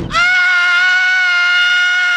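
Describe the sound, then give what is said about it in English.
Inside a house, a woman lets out a single loud, high-pitched shriek, held at a steady pitch for about two seconds, with no talking, terrified by a sink overflowing with dishes. “From outside the house, we hear Mrs. Hummers let out a shriek.”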